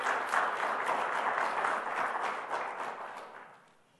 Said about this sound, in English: You can give all those people an applause. Cooking for 90 people? Come on. Woo!